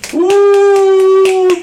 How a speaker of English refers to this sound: We made it, people, because clapping is too loud, so I'm gonna be snapping.